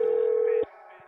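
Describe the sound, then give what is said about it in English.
A single telephone ring tone: a steady, mid-pitched electronic beep that holds loudly for about half a second, then cuts off abruptly as the call is answered on the first ring, leaving quiet, muffled phone-line hiss. “You answered on the first ring, bro.”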